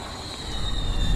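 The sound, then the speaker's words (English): A steady, high-pitched whistle like a tea kettle holds one shrill tone throughout, over a low rumbling hum that swells slightly toward the end. No one speaks. “why is there a tea kettle?”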